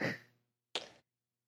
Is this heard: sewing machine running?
no